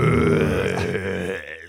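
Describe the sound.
A man growls angrily for under two seconds, a gravelly, low, rasping vocal snarl held steady and loud before trailing off, with no words spoken.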